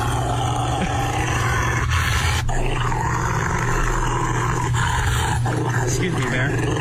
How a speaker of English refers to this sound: This guy tries to bathe his Rottweiler. Okay. Yeah, listen to how mad he gets. This is like, would you want to bathe this dog?